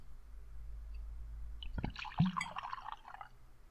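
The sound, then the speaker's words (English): A glass clinks once, then scotch glugs and splashes into it in a short pour of about a second and a half, fading out. No one speaks. “and now I'm gonna pour mine.”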